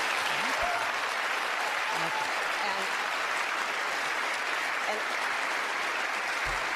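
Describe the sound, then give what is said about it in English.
A crowd of Iowans applauds steadily, a dense, even wash of many hands clapping at a constant loudness throughout, with a few faint vocal sounds mixed in. “Who are those Iowans clapping?”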